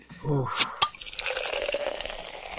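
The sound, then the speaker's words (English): A non-carbonated drink is poured steadily into a glass, a gurgling stream with no fizz whose pitch rises as it fills, following a brief voice and a couple of sharp clinks at the start. “Drink with me, friend. A little bit less fizzy today. Yeah, actually, no carbonation.”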